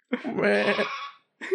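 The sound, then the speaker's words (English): A person imitates a sheep's bleat with one long, wavering, nasal vocal bleat lasting about a second, followed by a brief start of another vocal sound, fairly loud. “What sound was that? It's what a sheep makes.”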